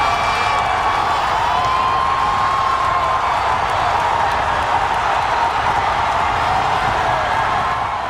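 The huge crowd at Belmont Park in 2015 roars without letup as American Pharoah hits the top of the stretch on the way to winning the Triple Crown, a dense, steady wall of cheering and shouting with thin whistles and whoops cutting through the din.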